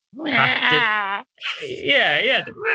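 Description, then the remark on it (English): A voice imitates a banshee's keening wail in two drawn-out cries, the first long and steady, the second wavering up and down in pitch, loud and strained with no other talk. “So the noise itself that the banshee makes.”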